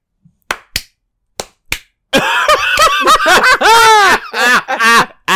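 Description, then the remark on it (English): Four sharp, loud hand claps land at a slow, uneven pace, followed by a burst of high-pitched laughter that carries through to the end. “That deserves a slow clap.”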